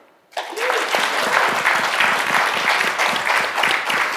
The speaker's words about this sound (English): Was that a golf clap or was that enthusiasm? I can't tell.